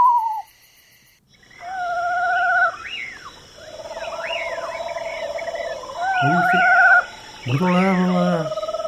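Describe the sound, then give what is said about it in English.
An eastern screech owl (genus Megascops), one of the smallest owls in North America, gives a series of quavering, whinnying trills, rising and falling like a tiny horse's neigh, clear against a steady high insect drone. “So that was a screech owl, the eastern screech owl, the genus Megascops.”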